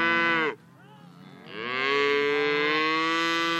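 Angus cattle mooing on a farm with 250 head of cattle: one long, loud, droning moo ends, a brief quieter pause follows, then another moo swells up and holds steady to the end. No talking.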